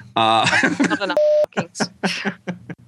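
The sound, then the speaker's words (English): A single flat, steady censor bleep lasting about a third of a second cuts a swear word out of a man's speech, with talking before and after the tone. “I hate putting all those beeps in.”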